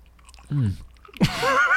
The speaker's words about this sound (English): People get mad when you chew gum on these things.